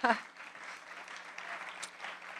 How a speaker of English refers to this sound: And we have our own former Lawrence Berkeley National Laboratory director, Stephen Chu, at the helm of the Department of Energy. So it's wonderful. Yes, we can clap for that too.